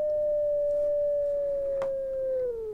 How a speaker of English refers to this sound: here is light detector, a little bit different tone